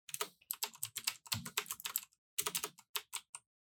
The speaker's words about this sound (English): I couldn't hear you clicking and clacking, so. Which is weird because I have a very clicky-clacky keyboard.